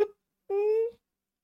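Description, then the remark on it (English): A person's voice imitates a cat with one short, sustained meow-like tone of about half a second, steady and slightly rising in pitch, clear, with nothing else around it. “The cat.”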